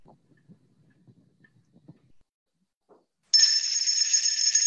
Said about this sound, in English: There's the bell.